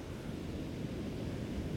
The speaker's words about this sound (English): So right now we're next to a beach, so you got the waves crashing.